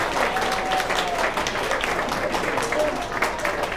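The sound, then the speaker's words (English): A crowd breaks into a steady round of applause for the Knights, who cooked breakfast for the meeting. Dense overlapping claps are sustained at an even, fairly loud level, with faint murmuring voices mixed underneath. “Okay, by the way, just a brief round of applause for the Knights for cooking our breakfast.”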